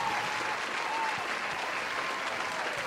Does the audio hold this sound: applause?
yes